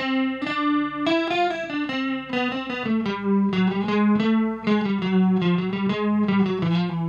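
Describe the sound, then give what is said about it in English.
Two slightly detuned notes from a Pitchfork effect, set to an interval between a unison and a minor second, sounding together over a series of sustained, distorted tones, their wavering beating giving a shimmering, chorus-like effect throughout, with no talking. “It kind of just sounds like a chorus in this setting.”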